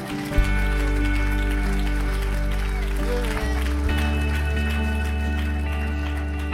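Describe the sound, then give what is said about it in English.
An audience gives a ten-second hand clap, clapping steadily in a dense crackling wash of hands mixed with loud sustained organ-like chords that hold through the whole stretch. “If you believe it, would you give him 10-second hand clap today?”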